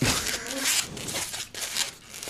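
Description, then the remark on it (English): Squeaky rubbery rubbing and crinkling as a balloon is twisted right by the microphone, a steady run of scratchy, high-pitched squeals and stretches lasting a couple of seconds, fairly loud. “I hope he doesn't pop that balloon, because it's right by the mic.”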